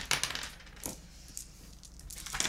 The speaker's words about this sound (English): And then everyone roll the dice that you have in front of you.